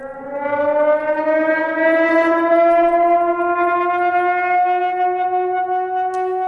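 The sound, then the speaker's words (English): A Cold War era-style civil defense warning siren, played as a test rather than a real alert, wails steadily, its tone slowly rising in pitch over several seconds. The sound is loud, sustained, and sits alone with no voices. “And just so everyone knows, this is not a real siren before this goes out, but let's hear that siren.”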